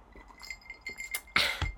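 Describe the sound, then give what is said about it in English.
A Beavertown pint glass holding homemade iced tea clinks a few times, short bright taps followed by a louder, ringing knock near the end, with no one talking. “Have you noticed the cup you're drinking out of? Is a pint glass.”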